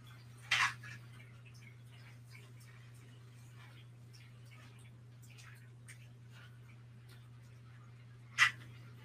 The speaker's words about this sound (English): It looks like big ass spring rolls styles. Let's see. I'm gonna stir this up. I can hear it sizzling.